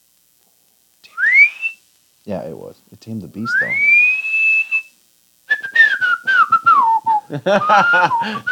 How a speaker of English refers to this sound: All right, our poor listeners right now with the whistling.